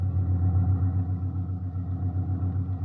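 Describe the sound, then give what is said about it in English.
The engine of an old jalopy ambulance drones steadily as it drives along the road toward Madrid, a deep, even rumble with a slight pulsing throb and no voices. “This ambulance makes pretty good time for a jalopy.”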